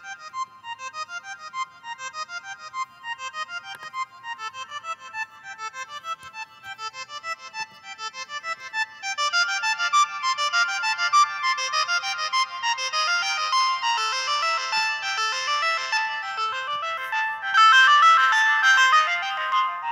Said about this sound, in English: Okay, so you can see it's a lot of fun to play around with the sound of the oscillator and some of the filters and reverb. There's a lot of cool sounds built into this.